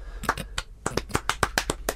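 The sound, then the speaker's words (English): Scattered applause from a small group, with sharp hand claps arriving in a quick, uneven patter at moderate loudness, with no voices. “Why are we applauding this?”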